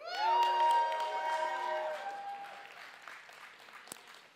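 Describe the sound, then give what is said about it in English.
A group of young voices erupts in loud, high-pitched shouts and whoops in a church, with scattered clapping that carries on as the cheering gradually tapers off. “Can I get a shout out by our youth?”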